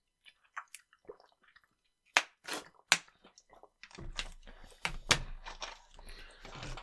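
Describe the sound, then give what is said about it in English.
Crunchy chewing of popcorn with a series of sharp, irregular crackles and crunches, with no talking. “Oh, I got a piece of popcorn hidden.”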